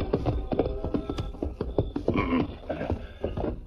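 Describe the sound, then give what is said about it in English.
Horses' hooves clip-clop in a quick, steady rhythm, many hoofbeats close together at moderate loudness, continuing without a break and with no one speaking, as Tonto's horse rides with the great white stallion Silver pacing it, nearing the Diamond S ranch. “Meanwhile, Tonto, following Silver's back trail, and with the great white stallion pacing his own horse, reached a point not far from the Diamond S.”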